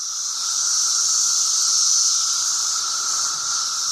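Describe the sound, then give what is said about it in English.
A dense chorus of Brood X periodical cicadas, in a recording from 17 years earlier, drones steadily and loudly, a continuous high-pitched buzzing whine with an undertone, holding at an even level throughout with no voices. “It's when the cicadas called Brood X emerge from the ground and chirp and make noise for about a month.”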